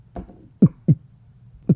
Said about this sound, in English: No. It's like a heartbeat. Yeah, I don't enjoy it. I don't like it. It was like a heartbeat, but like from like a big frog or something. Yeah, big frog with a big throat.